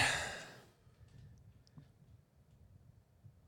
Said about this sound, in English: He's exhaling. Look at him go.